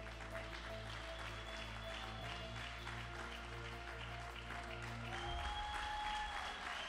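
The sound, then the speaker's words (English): An audience bursts into sustained, dense applause, many hands clapping steadily at a fairly loud level, with a low organ-like tone held underneath. “That clapping you just did is for your uncle.”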